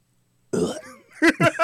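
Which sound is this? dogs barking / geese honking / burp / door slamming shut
burp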